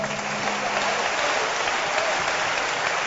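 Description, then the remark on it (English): An audience claps their hands in sustained, dense applause, steady and fairly loud throughout, with no clear talking over it. “Clap your hands again.”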